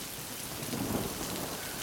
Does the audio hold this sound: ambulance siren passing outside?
no